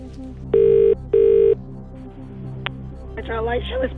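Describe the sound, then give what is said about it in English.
Two loud, steady ringback tones sound in a row, each about half a second, as a friend is phoned, followed by a brief click and the muffled start of the friend answering on the line. “Who do you want to call?”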